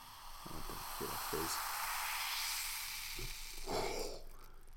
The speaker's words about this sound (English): Sound-wise? Warp zone. This soda. It just went into that is another dimension. The best fizz that's, I've ever heard. That's number one fizz.